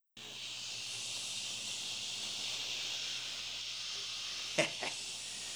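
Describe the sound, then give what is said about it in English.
A steady, bright hiss of TV static runs throughout at an even level, broken near the end by two brief clicks or pops. “Oh, that's better. Static. The best thing on.”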